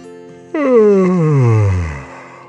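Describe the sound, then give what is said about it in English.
A voice imitates a long, sleepy yawn, starting with a sudden open breath and sliding slowly downward in pitch before fading out, fairly loud, with no words. “The little cleaner fish yawned.”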